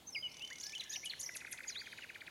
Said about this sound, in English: It was a work of art, contained in a casket. A clockwork nightingale covered over and over with diamonds, rubies, and sapphires. As soon as the artificial bird was wound up, it could sing like the real one.